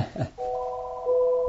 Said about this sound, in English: We're in a kitchen and there's the phone.